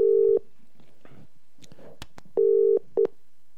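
A phone line rings with a steady electronic double-burst tone as a call is placed to a guest, short pulses separated by a long pause, clear and fairly loud, with faint background rustle in between and no talking.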